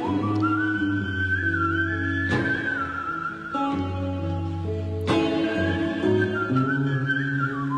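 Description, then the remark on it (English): A man whistles a smooth, sustained melody with gentle pitch bends, carried over steady instrumental backing with occasional crashing accents. The whistling is clear and prominent throughout. “Okay, so he whistles. Very professional.”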